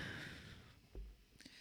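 Airy breath noise rushing into a microphone, followed by a soft low puff of air hitting it and a few faint clicks, with no talking.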